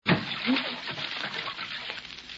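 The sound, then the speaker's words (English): Water splashes and churns loudly, a burst of sloshing and spattering as a man lying in a full bathtub has his feet jerked up, going under the water and thrashing, with faint voice-like sounds mixed in. “Well, you can come out from under the water now, darling.”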